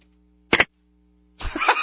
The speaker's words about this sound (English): And then the angry slam of the phone.